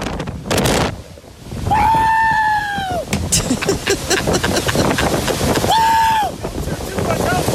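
People cheer and scream wildly at a big wedge tornado over a constant roar of wind buffeting the microphone, with two long, high-pitched shrieks rising above the rush of air and excited shouting.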